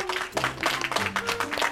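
A short burst of applause, dense clapping at steady volume for under two seconds, with a faint sustained tone running underneath.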